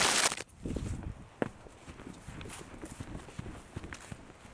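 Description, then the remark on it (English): Footsteps swishing and crunching through grass in a steady walking rhythm, a soft brushy step roughly every half second, opening with a louder rustling burst. “That was some grass.”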